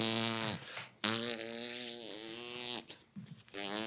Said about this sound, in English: Dude, if I had a Ring doorbell, oh my, I'm farting and shit.